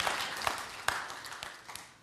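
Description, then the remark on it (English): Thin, scattered applause from an audience, a few sharper individual claps standing out over a soft wash of clapping that gradually tapers off over two seconds. “That was a little weak. We got people clapping a whole lot earlier.”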